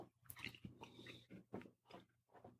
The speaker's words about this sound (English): You definitely get the mint right off the bat. Yep. With that cookie. And, of course, the delicious crunchy chocolate. Mm-hmm. That's a crunchy cookie.